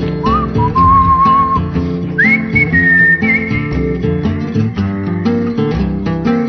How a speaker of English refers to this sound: Everybody whistle!